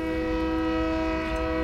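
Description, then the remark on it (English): A train horn blares loudly and steadily, its sustained harmonic chord holding over low rumbling rail noise from a passing train. “You guys hear the train?”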